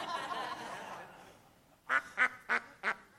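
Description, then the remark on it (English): A small Dutch hookbill duck quacks five times in a quick, evenly spaced series, loud, after a stretch of muffled background noise fades out. “And so when you recognize that these animals have some fascinating stories, and this right here is one of I my little Dutch hookbills.”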